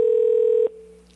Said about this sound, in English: He's not answering. Just keep ringing.